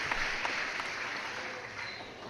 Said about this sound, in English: You got a sound bite? Maybe a cheering or something? I wish. A clap? No, nothing. Yeah. There you go. Yeah. This one's got crowd noise in the background too at the end.